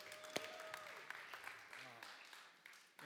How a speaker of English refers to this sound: Could we give the worship band a round of applause, please?